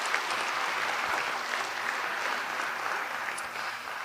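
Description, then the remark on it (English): An audience at a Lighthouse Writers Workshop Writers Studio event at East High claps steadily for about four seconds, a dense, even wash of many hands with no voices standing out. “Yes, let's give it a round of applause.”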